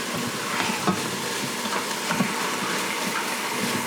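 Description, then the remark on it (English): Steady sizzling of onions sweating and chicken browning in a pan, a continuous crackling hiss with a few louder pops and spatters, no voices. “And the sizzling sounds great.”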